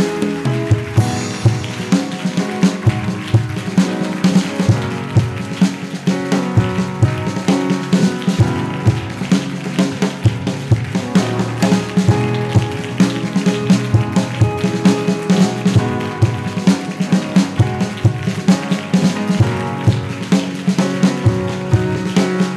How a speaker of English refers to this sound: As I clap my hands, anything dominating in my life, in my business, in my finance, as I clap my hands, let them catch fire. Right now, clap your hands and pray.